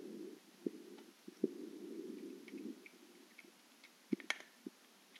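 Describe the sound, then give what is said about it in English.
A female cat named Rambo eating crunchy kibble: a handful of sharp, irregular crunches and clicks over a low, steady rumbling, fairly quiet overall, with no voices. “Can you hear my cat eating?”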